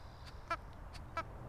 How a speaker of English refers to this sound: That's a bird. That's a bird right there.